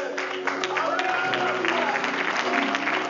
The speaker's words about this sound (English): Hallelujah. Bigger clap for this powerful, historic day in heaven. Thank you.